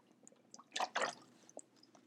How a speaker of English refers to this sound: I'm drinking coconut water. And yes, since she's wanting to know who's drinking coconut water, we just answered your question.